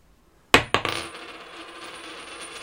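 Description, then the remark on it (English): A tossed coin strikes a table with a bright metallic clink, bounces once more, then rattles and rings as it spins down to rest, landing heads. No one speaks. “I'm going to let you call it in the air. All right. Let it bounce on the table here. Tails.”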